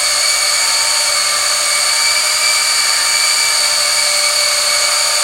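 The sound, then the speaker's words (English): A power drill whirs steadily at a high, whining pitch, mixing wine must with a constant loud buzz and faint churning underneath, running unbroken with no talking. “Okay, so we're gonna get this mixed up really good.”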